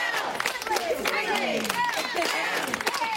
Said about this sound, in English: It doesn't change even when her fellow employees give a group cheer.